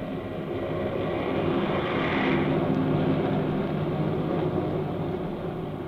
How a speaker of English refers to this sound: Far overhead, a fleet of airplanes soars in battle formation, a jagged spearhead against the fleecy clouds.